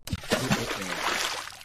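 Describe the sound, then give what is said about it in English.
A single loud splash of water, a burst of spraying, sloshing noise that washes over for under two seconds before fading out. “That got you very wet, did you see?”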